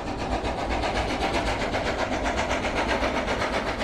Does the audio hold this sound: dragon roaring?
no